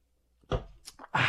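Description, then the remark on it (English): Someone takes a quick sip of a drink: a soft clunk, a brief slurp, then a louder breathy gulp. No one speaks. “I opened the damn thing, never took a real sip of it.”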